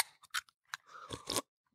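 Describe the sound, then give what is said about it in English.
A can of fizzy water is opened: a few sharp crackling clicks, then a brief rush of hissing fizz that swells and cuts off. No one speaks. “Well, for the record, it's just a fizzy water. It didn't give quite that sound as I had hoped.”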